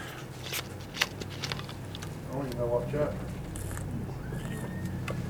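A speaker reading from Ephesians pauses to take a sip of water, with soft wet clicks, a brief slurp and a quiet swallow over a low steady background hum.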